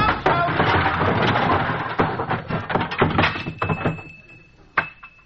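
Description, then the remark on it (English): A closet door opens and its contents avalanche out in a long, loud cascade of clattering and banging junk, tapering off to a lingering tinkle and one last thud. “Costello, you're going in the wrong door. That's a closet.”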